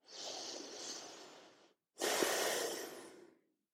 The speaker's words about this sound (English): So let's start breathing deep and slow.